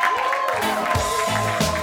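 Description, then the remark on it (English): An audience claps steadily for a couple of seconds after a pitch, a dense, even wash of hand claps with some cheering voices mixed in, holding at a constant loud level throughout. “Clap it out.”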